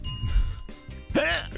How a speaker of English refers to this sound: Hiccup? Yeah.